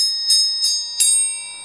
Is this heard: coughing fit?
no